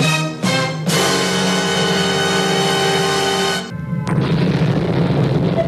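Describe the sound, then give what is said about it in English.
An atomic bomb explosion sound effect played by a radio show's production team: a couple of quick bursts, then a loud, sustained roaring blast for about three seconds that dips briefly before a harsh, rumbling tail takes over. No one speaks. “Can we hear that fantastic atomic bomb again from production? A-plus sound effect.”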